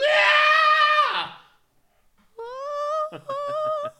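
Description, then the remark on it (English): A person screams from the throat: a loud, strained scream rings out for about a second, then after a short silence a second harsh, wavering scream breaks into rough pulsing bursts. Both are unaccompanied. “You're screaming incorrectly.”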